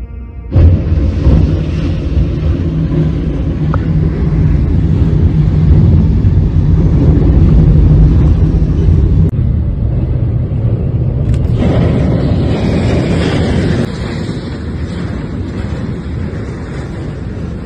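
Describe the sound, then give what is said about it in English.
A train slams into a truck carrying a huge I-beam that is stuck on the tracks: a loud, sustained low roar and rumble, with an abrupt crunching jolt about midway and wind-buffeted noise continuing afterward. No one speaks. “So do we have like a fun video of a train hitting something?”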